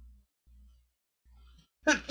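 A single sharp, loud sneeze bursts out near the end, after a stretch of near silence with only a faint low hum.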